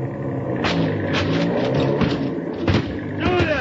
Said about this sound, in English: You go start the motor.